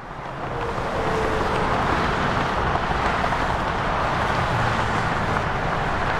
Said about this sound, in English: I went out to an I-40 overpass in Durham, and I watched the trucks go by for a while.